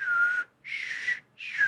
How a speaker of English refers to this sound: I can whistle, but I can't do like repetitive sounds. You know what I mean? Like I can't whistle for shit. Like, let me show you my attempted whistle.